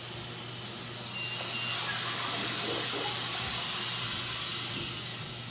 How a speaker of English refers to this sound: Is that the refrigerator making that noise? Yeah. Well, turn the refrigerator and see.